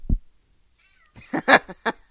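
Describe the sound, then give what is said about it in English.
A domestic cat, a female, meows in a short burst of a few strained, rising cries, following a soft thump, with no talking over it. “And meowing. My cat says hello.”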